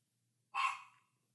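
A speaker's own female dog gives one short, sharp bark, clear, and then falls quiet. The bark rings out alone against a faint low hum, with no voices.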